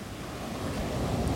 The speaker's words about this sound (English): Oh, there's a fair number of rocks just out there. Mm-hmm. I wonder if there's no surfers at this beach. Waves break too close. Well, it could be the tide too. We're at high tide, so.